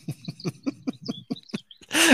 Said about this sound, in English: The birds are definitely enjoying this entire time. I thought like there was noise canceling, but I didn't realize you guys could hear all the birds. My bad. It's okay. It's kind of calming. I love it.